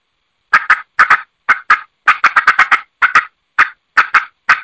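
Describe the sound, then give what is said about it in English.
Loud, sharp turkey clucks in quick, irregular bursts of two to five notes: wild turkey cutting in Eastern or Osceola style, made by a caller imitating the bird, with no talking. “I'm going to do some cutting as an Osceola or an Eastern.”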